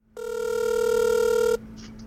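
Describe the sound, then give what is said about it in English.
A single ringback tone from an outgoing phone call to a friend: one steady, buzzy ring lasting about a second and a half, fairly loud, then cutting off into quiet line hiss. “So I ended up doing something a little peculiar and sort of phone call ambushing my friends.”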